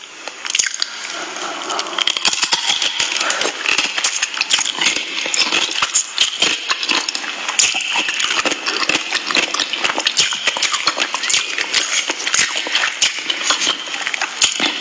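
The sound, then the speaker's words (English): Loud chewing of pickles by a woman, wet crunching and squishy smacking repeating steadily without pause, with no one speaking. “But it says, can you listen to this woman chewing pickles?”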